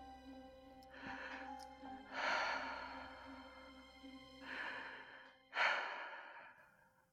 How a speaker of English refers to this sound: So, who the fuck was just breathing down the mic? Like, can you not do that? That is very uncomfortable.